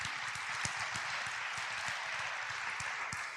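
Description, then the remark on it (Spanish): An audience claps for the Lord during a bilingual English-Spanish sermon in a dense, steady burst of applause, many hands overlapping into a continuous crackling wash with sharper individual claps standing out. No voices are heard. “Okay, let's give the Lord a clap.”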